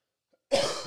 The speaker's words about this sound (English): I still heard that. Yeah, I tried to cough.